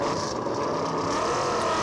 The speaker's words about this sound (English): They fire up the V8 engines at the front of the grid and a variety of engines at the back. Nice mixed bag this season of GT3 cars. Lamborghini, AMG, the Aston Martin, Ferrari, Porsche.